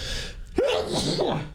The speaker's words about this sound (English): Sneeze. That was good.